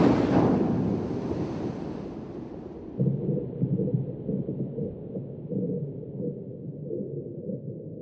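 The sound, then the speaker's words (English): A rushing wash of surf crashes loudly at first and fades, leaving a deep, steady rumble of wind and sea that swells again midway, with no voices, presented as the infinite abyss of the sea from the game Dredge. “So in their stead, please welcome to the stage the breakout star of Dredge, the infinite abyss of the sea.”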